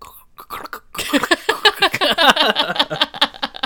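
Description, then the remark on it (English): A voice imitates a clip-clopping pony as it dies, with a rapid, uneven string of strained, sputtering clicks and cough-like bursts that grow louder and rougher after a faint start. “That was a clip-clopping pony while it died.”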